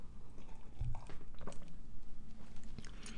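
Someone sips tea, with a few quiet wet slurping and swallowing sounds, mouth noises over a low background hum and no talking.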